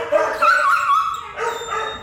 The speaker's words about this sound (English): so this next piece, I wouldn't say it's sound art per se, but it's a field recording made surreptitiously by a guy named Claude Matthews. Once you've heard a big dog cry, you won't forget it.